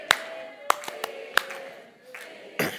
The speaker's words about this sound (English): You're on beat too, come on. Some people be out here clapping, I'm like, stop it, you're ruining the melody.